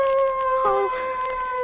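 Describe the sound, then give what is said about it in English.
Dogs howl in long, sustained, wavering tones, with a second brief howl swelling over them midway before fading back into the steady drawn-out cry. “Those dogs.”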